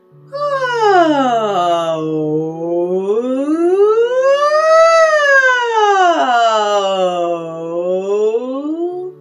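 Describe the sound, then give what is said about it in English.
A single voice imitates a siren as a vocal exercise, its pitch sliding smoothly up and down through two full sweeps. The tone is sustained and steady, with no other sounds. “Just make a couple of siren noises.”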